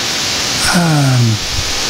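Steady, loud electronic static hisses through a headset line for the whole stretch, with a brief falling voice-like tone cutting in near the middle before the hiss carries on alone.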